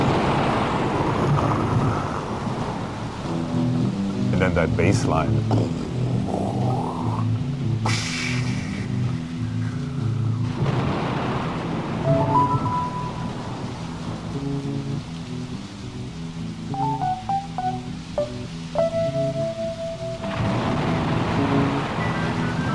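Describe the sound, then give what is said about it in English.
A steady wash of rain noise with rumbles of thunder runs through a music track, layered over a pulsing bass line, with a man briefly speaking over it. “He said, we got to put in some rain and thunder. So sure enough, I mean, the whole thing starts with...”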